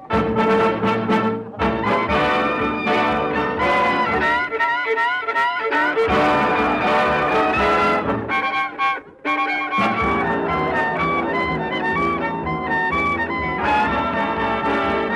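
A dance orchestra plays a lively tune, with a hot violin weaving bright, quick melodic runs over the full band. The music stays loud throughout, pausing only briefly between phrases.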